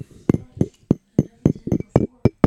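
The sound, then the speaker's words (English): Glasses of bourbon clinking together in a toast to the audience, a quick run of about nine knocking clinks in a steady rhythm, fairly loud, with no talking. “That's us cheersing the audience.”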